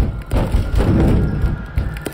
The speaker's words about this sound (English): They knew what I was doing, I think, because suddenly my father and brothers were slamming themselves into the door.